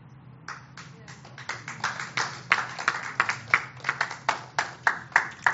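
An audience breaks into applause, starting faint and swelling louder, with sharp claps landing in a quick, fairly steady rhythm over a low background murmur.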